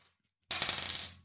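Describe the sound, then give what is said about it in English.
A single die is rolled across a tabletop for an empathy wits check in a tabletop game, landing with a sharp clatter and a quick flurry of small rattling bounces before settling. It is fairly loud, with no voices. “I'm going to get you to make a empathy wits check. One dice.”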